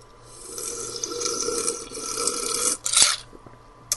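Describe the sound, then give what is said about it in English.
Someone drinks Mountain Dew soda: a steady hissing, gulping rush of liquid for nearly three seconds, then a short louder burst and a faint click at the end. No one speaks. “Sorry, I was drinking Mountain Dew.”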